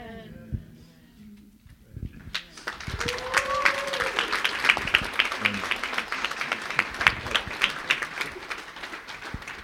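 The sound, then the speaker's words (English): After a brief moment of someone speaking, an audience bursts into applause for the graduating class of 2023 as they make their way back, a dense, steady wash of many hands clapping that stays fairly loud and sustained to the end. “All right, yeah, let's give them one more round of applause as they make their way back.”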